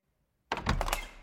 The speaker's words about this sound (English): you better hop off that dick and come open this door right now.